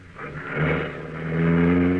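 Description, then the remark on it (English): A car engine revs up loudly, its pitch climbing as the car pulls away around the front of a barn, the steady motor growl swelling and holding strong with no voices over it. “Stop that car, you!”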